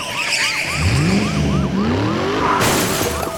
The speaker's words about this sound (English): Somewhere about midway across, one of the deputies came ramming into the side of his truck.